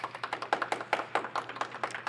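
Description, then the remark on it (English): A small group claps as a vote for "FBI agent" to make its way into the internet history books, in a brisk, uneven patter of sharp hand claps that overlap for about two seconds, fairly soft overall and with no one speaking. “If we think FBI agent should make its way into the internet history books, please clap.”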